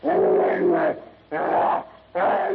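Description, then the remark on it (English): A savage, rage-filled howl of a half-human brute crashing to its knees, seemingly voiced by a person imitating a beast: three loud, snarling bursts, the first long and wavering, the next two shorter, with brief pauses between. “With a howl of savage rage, the half-human brute crashes to its knees.”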